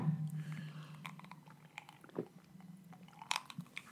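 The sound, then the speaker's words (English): Wet slurping and sipping sounds from someone drinking during a toast, a few short bursts spread over a few seconds, quiet against a steady low hum, with no talking. “Here, let me slur my drink so you can hear. Well, let me have a sip too.”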